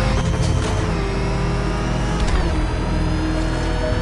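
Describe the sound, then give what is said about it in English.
The Batmobile's loud engine roars steadily for a few seconds with a whining harmonic tone, surging in pitch about midway as Batman revs it back to life and speeds away. No voices are heard. “Batman has heard enough as he revs the Batmobile back to life and speeds away.”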